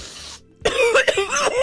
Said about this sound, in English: Oh, holy crap. Sorry that made you gag. That was a really loud cough.